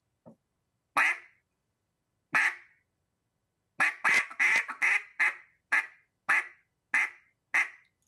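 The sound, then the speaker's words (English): Loud duck quacks from a hunter's duck call: two spaced single quacks, then a quick run of quacks that settles into an evenly paced series, with no talking. “And then a sound that's overlooked that I use a tremendous amount is a simple quack.”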